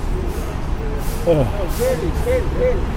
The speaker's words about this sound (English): Approaching the bus terminal here.